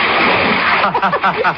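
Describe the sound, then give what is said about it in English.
A steady, loud wash of splashing water from a person swimming in a pool, churning noisily for most of a second before voices start talking over the continuing splashes. “We better stand back. I splash.”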